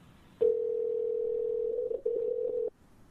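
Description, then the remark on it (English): A steady telephone dial tone, heard as a phone call is placed for an interview, hums loudly for a little over two seconds, broken by one brief dropout near the end before it cuts off abruptly. No one speaks. “All right, let's get Jonathan on the phone.”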